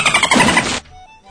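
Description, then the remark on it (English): Dolphin noises: a dense, loud burst of squealing, chattering calls for under a second, then a sudden cutoff leaving only a faint, thin tone. “And a few dolphin noises.”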